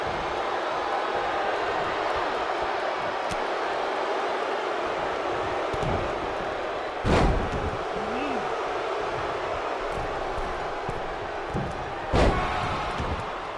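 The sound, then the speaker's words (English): A wrestler's double stomp lands on the ring mat during a Ted DiBiase versus Jeff Jarrett match: two loud, sharp thuds about five seconds apart, rising above a steady, noisy crowd roar that fills the whole stretch. “Oh, double stomp.”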